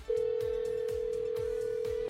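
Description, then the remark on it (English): A steady, even telephone ringback tone hums for about two seconds, the sound of an outgoing call ringing, over a quieter rhythmic music bed with regular low beats. “All right, we're going to call him up.”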